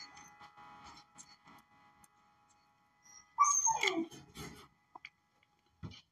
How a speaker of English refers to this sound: And the dog keep barking, man. I'm gonna bark on him.